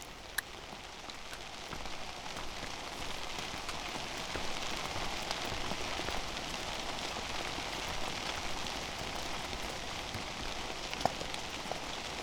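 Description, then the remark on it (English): Steady rain starts to fall again outdoors at the end of a day of hiking, within sight of Katahdin, a dense, even hiss of countless drops with occasional sharper ticks of individual drops striking, continuous and unbroken with no voices. “And it's starting to rain again.”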